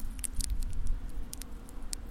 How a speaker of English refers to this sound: I don't know if you can hear it, but the actual wheat is snicking.